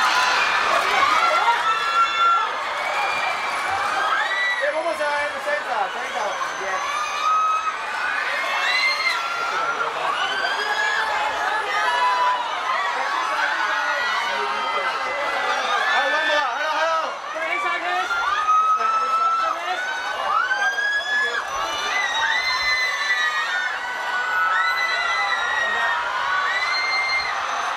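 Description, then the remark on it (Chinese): Over a thousand fans waiting outside a shop at a brand event in Hong Kong scream continuously at high pitch as a star appears, a loud, dense wall of shrieks and whoops that rises and overlaps without pause. “相隔四年再集港的银优一出场，现场粉丝尖叫声不断。”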